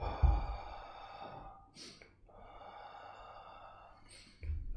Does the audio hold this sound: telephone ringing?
no